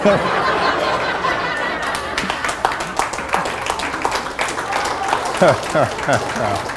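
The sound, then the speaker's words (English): A Christian audience claps steadily, dense overlapping hand claps, with some chatter and scattered vocal exclamations mixed in near the end. “This is the easiest way to get applause I know.”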